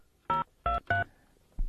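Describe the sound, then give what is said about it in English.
A phone number being dialed by a Radio Veritas presenter calling a listener: three clear, beeping keypad tones in an uneven rhythm, followed by a fourth tone after a short pause, with no talking. “Let's see if we can get hold of her.”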